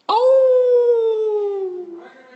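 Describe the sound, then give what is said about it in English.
A single long, wavering howl like a wolf's, probably a human voice imitating it, sliding slowly downward in pitch for about two seconds before trailing off, fairly loud, heard off in the distance. “A wolf howled.”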